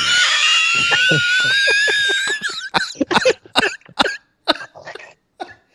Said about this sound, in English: This man is screeching. He's screeching right now.